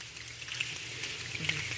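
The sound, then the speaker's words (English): The Angel City Chorale makes rain sounds with their hands and bodies, rubbing hands together, snapping and patting: a soft, steady patter of rubbing and tapping with scattered sharper snaps, continuous and fairly quiet throughout. “They're doing all this with their hands and their bodies, making it sound like rain.”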